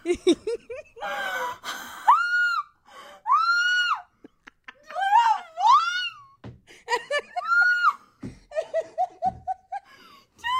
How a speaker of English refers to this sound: You're screaming and stomping. I'm excited. I'm really excited.